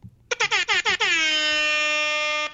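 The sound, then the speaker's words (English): A loud air horn fires off five quick, sharp bursts in a rapid stutter, then blares into one long sustained blast that holds steady until the end. “Just break out the air horn anytime.”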